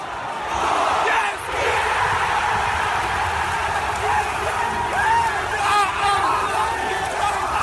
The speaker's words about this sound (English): Also, I like my first shout. I shout yes before the crowd goes nuts, which is my favourite part.